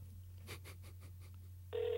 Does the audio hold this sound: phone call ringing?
yes